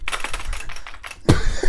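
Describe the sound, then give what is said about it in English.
Rapid clicking of computer keyboard keys in a quick irregular rhythm, ending with a louder thump of a heavier keystroke near the end, as someone types notes into a Google Doc on a keyboard held in the lap. No one speaks. “we have to type it down in the doc immediately”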